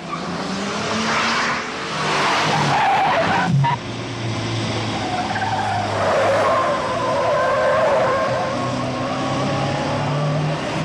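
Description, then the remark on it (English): A loud car chase in a movie, with Peter Braham driving the car chased by John Wayne in a brand new yellow Ford Capri: engines roar while tires screech and skid in several long, wavering squeals over continuous rumbling motor noise, with no talking. “When presented with a car chase, couldn't have anyone better behind the wheel than Peter Braham.”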